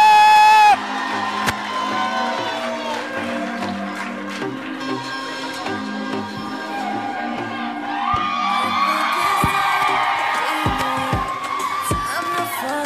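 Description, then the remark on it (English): A crowd cheers and whoops loudly as comedian Carlos Miller is introduced, with shouts and yells rising over a steady roar of applause-like noise that swells toward the end. “Hey, y'all start making some noise for my dog.”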